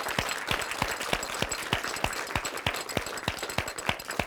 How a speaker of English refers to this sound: Thank you so much for coming, everybody. I'd like to give one more round of applause to everyone who's taken part in making these movies.